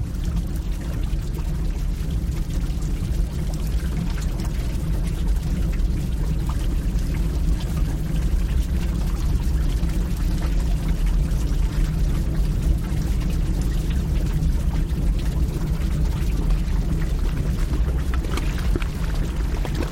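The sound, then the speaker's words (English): Thick bubbling and gurgling churns steadily from volcanic mud pots in Rincón de la Vieja National Park, northwest Costa Rica, a dense, low, continuous blub of mud popping with no pauses and no voices. “the lush forests of Rincón de la Vieja National Park brim with volcanic activity, including bubbling mud pots and steaming vents and a boiling lake.”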